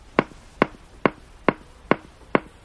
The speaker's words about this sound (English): This might sound like a German industrial band from the 1980s. But this is a wild walrus, recorded in the Canadian High Arctic, underwater. The sounds are so loud and sharp they can be heard above the sea ice and underwater more than 5 miles away.